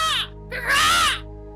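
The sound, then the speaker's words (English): A person imitates birds cawing with two harsh, nasal calls: a short one, then a longer, louder one, with no other sounds. “Birds can be heard in the background.”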